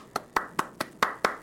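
Six crisp hand claps in a steady, quick rhythm, like a single person applauding, each sharp and bright with a short ringing tail; no voices are heard.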